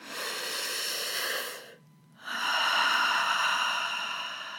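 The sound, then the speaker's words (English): Two long, breathy airflow sounds separated by a short pause, a wide-open-mouth breath drawn into the back of the throat followed by a slow, open-mouthed, hazy exhale like fogging a mirror, during a breathing exercise. Steady, with no talking. “You can think about inhaling with a wide open mouth, breathing into the back of your throat, and then exhaling as if you are fogging a mirror in front of you.”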